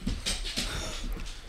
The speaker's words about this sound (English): My dog just came in. If you want to know what you're hearing.